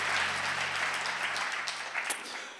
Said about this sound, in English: Clap your hands if you're ready to receive God's word.